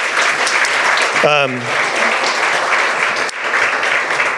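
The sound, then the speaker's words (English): Steady, dense audience applause for community members who shared the challenges they have gone through fills the whole clip at a loud, even level, with a brief voice cutting through near the start before the clapping continues unbroken. “You guys give a round of applause for them”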